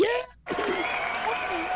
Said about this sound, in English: See, we have our own canned laughter here. Play and it cheers.